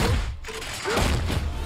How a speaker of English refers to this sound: Now he's smashing steel doors, not just wood doors.